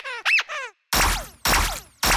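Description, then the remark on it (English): Three quick, high-pitched squeaks from a rubber duck with laser eyes, with wavering pitch, followed by three loud, harsh buzzing blasts that each carry a falling whine. No voices are heard. “Is that a rubber duck with laser eyes over there?”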